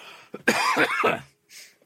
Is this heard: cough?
yes